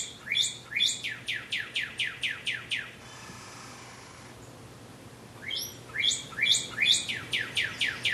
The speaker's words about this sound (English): Now, we also, not just national parks, we went to Sedona, Arizona. Beautiful red rocks there, mm-hmm. beautiful hiking. And if you got up early enough, you'd hear the early birds.